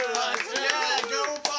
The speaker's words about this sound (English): Everybody clapping, everybody.